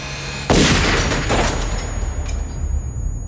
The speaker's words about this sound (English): The couple in the car have no time to wonder what is happening. A single gunshot rings out.